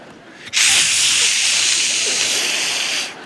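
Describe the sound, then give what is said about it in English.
An Axe aerosol deodorant spray can sprays in one steady, bright hiss lasting about two and a half seconds, loud and even throughout before cutting off, with only faint murmuring underneath. “Middle school boys, you know what they use? Axe deodorant spray.”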